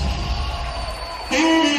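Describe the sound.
A crowd applauds steadily in a dense wash of clapping, then about midway the cheering swells louder as voices break out in whoops and yells over the clapping.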